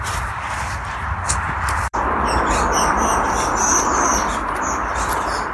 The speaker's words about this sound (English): And this is a real squabbling of sparrows. There they are.